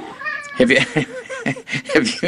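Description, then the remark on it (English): A cat named Piranha lets out a drawn-out, wavering meow while its owner is on the phone, then a person starts talking right after it, their voice filling the rest of the moment. “Whenever I'm on the phone, he's got to talk.”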